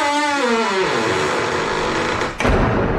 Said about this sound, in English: Now open the door. Come in quickly and close the door behind you.